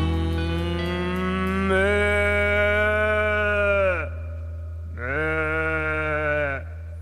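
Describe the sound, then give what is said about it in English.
Two drawn-out cow moos at the end of a song, loud, the first lasting several seconds and the second shorter after a brief pause, with no talking. “Well, you won't know what you're missing till you hear that sound. May you always have cows around.”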